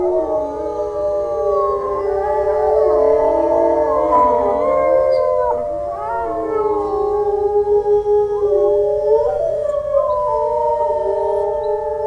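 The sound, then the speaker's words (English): A wolf pack howls in chorus, several overlapping voices rising and falling in long sustained tones, loud and continuous for the whole stretch with no talking. “Occasionally they call like this because, you know, during a hunt, one of the wolves wandered off and sort of got lost, broke away from the pack, so helping a pack reunite, because they split up when they hunt, right?”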